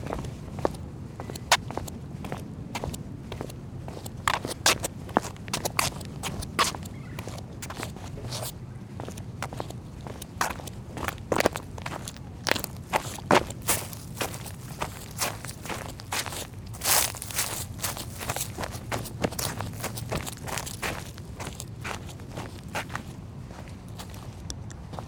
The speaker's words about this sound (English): Pretty nice. That actually feels very real on the footstep side.